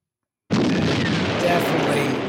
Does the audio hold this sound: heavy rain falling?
no